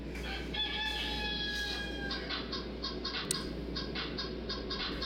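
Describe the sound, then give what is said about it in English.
A chicken in a video being played gives a drawn-out, tonal call, then breaks into a quick run of rhythmic clucks, slightly tinny and set over a steady low hum, with no one talking. “enjoy this video called The Hip Hop Chicken”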